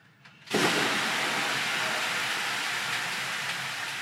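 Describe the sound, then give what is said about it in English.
A sudden, loud burst of steady hissing as water is poured onto hot sauna stones, starting after a brief quiet moment and continuing strongly without letting up. “You ready for some water?”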